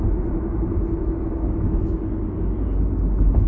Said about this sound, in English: But anyway, there's some kind of a traffic here.